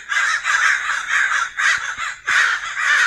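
Crows caw loudly in a rapid, harsh series of repeated calls with only brief gaps between them, and no voices.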